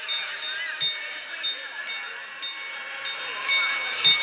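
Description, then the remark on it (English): The Prague astronomical clock, made in 1410, chimes with its little mechanised figures, sounding a steady run of about eight bright metallic strikes, each with a ringing high tone, over a constant hissy, rumbling background. “The astronomical clock of Prague has interrupted you, which was made in 1410.”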